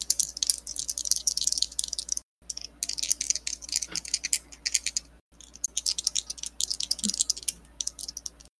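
Dice are rolled across a table for the damage of a greatsword attack in a game, clattering and rattling in three bursts of rapid, bright clicking with brief pauses between, steady and fairly loud, with no voices.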